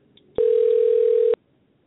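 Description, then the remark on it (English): A phone rings once with a steady electronic tone lasting about a second, clear and fairly loud, starting and stopping abruptly against a quiet background with no talking. “I hear something. I hear a phone ringing.”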